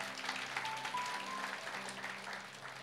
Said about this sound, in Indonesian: Tepuk tangan kita buat Tuhan.